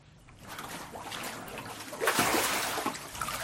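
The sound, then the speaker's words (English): Water sloshes and splashes, swelling into a fuller surge partway through as a person is immersed during a water baptism, with dripping and rippling continuing afterward and no talking. “And desire to follow the Lord in obedience and water baptism?”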